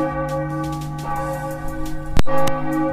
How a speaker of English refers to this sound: Can we get some bells for respect? Yeah, we'll give him another couple.